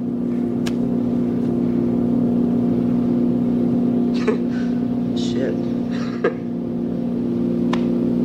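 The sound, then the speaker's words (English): A father's car is run in reverse to take mileage off, its engine running steadily throughout, a loud, constant low droning hum with no pauses, while a few brief, muffled mid-pitched sounds break in over the top. “And the ridiculous idea, if they ran the car in reverse, the mileage would go off.”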